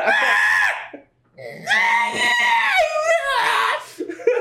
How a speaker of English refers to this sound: Owls screech like mentally deficient children. They do. They do.